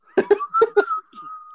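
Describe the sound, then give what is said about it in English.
Someone with a dry mouth tries to whistle, producing a thin, breathy tone broken by several puffy bursts of air, then a fainter wavering note that trails off. “my mouth is all dry. I can't whistle right now.”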